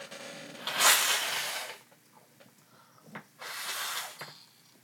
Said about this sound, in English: I'm gonna, like, blow my nose real quick.